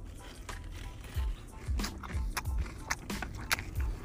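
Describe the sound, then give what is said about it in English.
Crunchy, piping-hot finger food being bitten and chewed, a steady series of loud, crisp crunches roughly twice a second, with no talking. “Listen to that crunch.”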